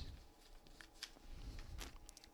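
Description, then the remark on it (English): Quiet rustling of paper as book pages are turned, with two or three soft crisp swishes over a low background hum and no voices. “I'm turning pages.”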